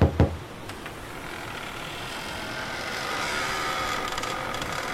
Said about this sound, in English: There we are. Let's give it a little knock, and...